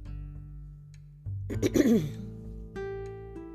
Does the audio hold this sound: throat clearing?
yes